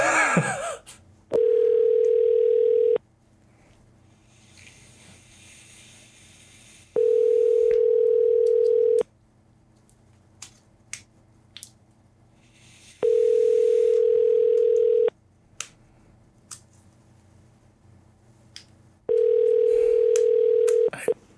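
A steady electronic telephone tone sounds after a phone is hung up. It repeats four times, each burst lasting about two seconds with longer quiet gaps between, fairly loud and clear over faint background noise.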